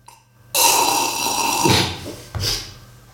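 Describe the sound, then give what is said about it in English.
A loud, hissy slurp of Maxwell Silver Hammer wine drawn through the lips lasts over a second, followed by a shorter, gurgling second slurp. No one speaks. “I'll just have a little slurp of it.”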